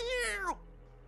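A single stray cat bolting away lets out a loud, drawn-out, angry screeching yowl, sliding down in pitch as it cuts off, followed by near silence.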